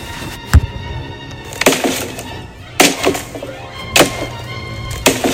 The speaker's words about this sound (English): Tin Man, your axe. Chop down the door. But that'll make noise.